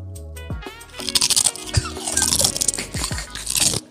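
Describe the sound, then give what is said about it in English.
A woman crunches potato chips right against the microphone, loud crunching with a rapid series of crisp, crackling bites and rustles filling the whole clip, with no talking. “She about to be petty as hell and crunch on the mic because they let her waste mics catch everything.”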